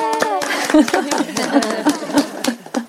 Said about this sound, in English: You can take your hands away. And now you can clap for yourself. Yay!